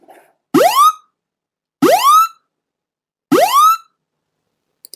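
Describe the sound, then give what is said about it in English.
A loud electronic alarm on a plane sounds three times, each a harsh rising whoop with bright harmonics lasting about half a second, separated by roughly a second of silence. “Loud Alarm On The Plane”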